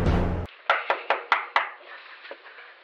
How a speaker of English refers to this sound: That's good, sweetheart. Keep knocking. Slower. Slower. Slower.